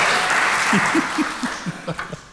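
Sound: audience applause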